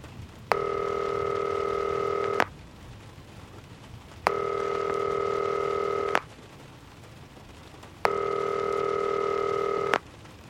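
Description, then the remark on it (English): A phone call to Toussaint ringing on the line: three steady, buzzy ring tones, each lasting about two seconds, separated by equal pauses, with no voices. “Time to call Toussaint one more time.”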